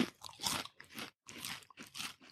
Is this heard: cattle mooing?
no